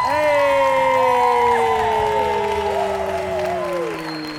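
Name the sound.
audience applause and cheering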